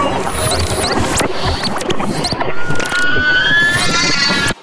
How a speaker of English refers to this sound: can you please stop banging those bones together? One, my head is splitting, and two, that used to be someone's arm. I got it from the band. Apparently all the music here is played with bones.